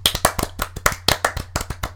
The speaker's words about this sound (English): The Bitch of the Episode just gets a round of applause and gets to state to everybody who's listening right now, I am a bitch. So, write that down, kids. Round of applause.